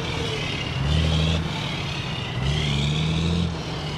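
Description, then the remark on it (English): Heavy diesel trucks rumble in, out and around the port of Los Angeles, picking up and dropping off loads, their engines swelling twice as rigs pass over a constant wash of traffic noise, with no voices. “Times a day, heavy diesel rigs scurry in, out, and around the port of Los Angeles, picking up, dropping off, and just waiting around, idling.”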